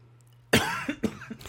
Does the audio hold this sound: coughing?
yes